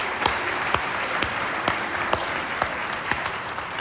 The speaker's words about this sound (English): So adults right now, why don't we give our kids a big round of applause for being with us?